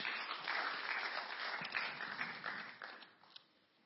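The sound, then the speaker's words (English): A crowd applauds steadily as the next speaker comes up, a dense wash of many hands clapping that holds strong for about three seconds before thinning out and fading, with a few last scattered claps. “Give him a round of applause as he comes up.”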